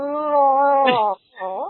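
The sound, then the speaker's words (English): A person's voice imitates a cat, first a long, drawn-out plaintive meow, then after a brief pause a shorter meow rising at the end. Fairly loud. “And she does that meow that they do that makes you feel like you're the worst person on the face of the earth.”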